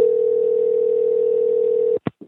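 A steady, unbroken telephone dial tone hums for about two seconds, then cuts off, followed by two brief electronic blips as a number starts being dialed.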